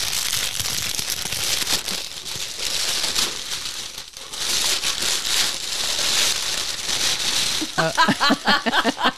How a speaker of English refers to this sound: Luckily, we remembered, and so I'm going to insert this opening. Right. And I did package it in brown paper wrapping for this very reason. I like that sound. Little ASMR.